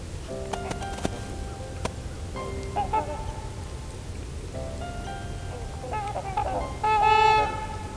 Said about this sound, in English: You're listening to some trumpeter swans.